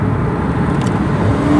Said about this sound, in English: So that must be the Western Mustangs soccer team and their bus on the way to Superior Heights Field, where they will play the Algoma Thunderbirds and almost certainly beat them.